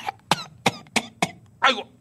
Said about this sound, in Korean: 아이고. 코로나가 왔나? 왜 열도 나고 기침도 나고.